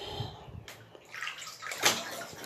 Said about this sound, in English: So if you hear sounds, it's the water beneath me.